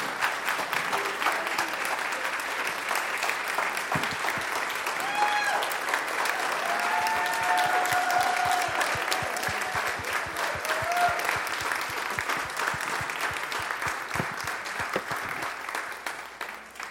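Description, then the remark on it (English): Sustained audience applause at a Rothko Chapel event, many hands clapping in a dense, steady roar for the whole stretch, with a few louder claps and faint voices or cheers mixed in underneath. “Can we please give them one more round of applause?”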